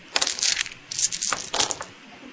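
Eight dice clatter and tumble across a hard surface, a quick run of bright, overlapping clicks lasting a couple of seconds, moderately loud, with no voices.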